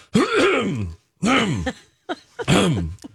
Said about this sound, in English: Every day at this time, we'd like to encourage you too to clear your throat.